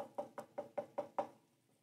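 Six quick, evenly spaced knocks on a wooden door, sharp, rapping in a steady rhythm before fading into a brief quiet tail. No one speaks.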